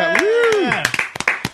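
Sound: hosts clapping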